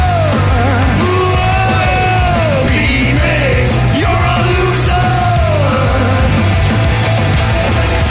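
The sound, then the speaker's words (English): A group of voices screams a name loudly together as part of the game Beat Mix, drawn-out shouted calls rising and falling over a thick, steady background roar that fills the whole stretch without pause. “Do everybody scream his name.”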